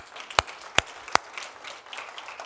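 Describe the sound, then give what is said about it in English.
Three sharp, loud hand claps ring out at a steady pace, over a soft, continuous background of faint scattered clapping and crowd noise, as a church audience applauds to thank a man after a prayer. “Seriously, the early clap from my wife is the greatest honor any human being can be given, so congrats.”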